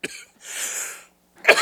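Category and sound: human body sound, cough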